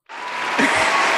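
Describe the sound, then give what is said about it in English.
A sudden burst of clapping from an audience welcoming a guest starts abruptly and holds steady at a loud, dense level, like a small crowd applauding all at once for about a second. “Okay, let's give Torian a round of applause.”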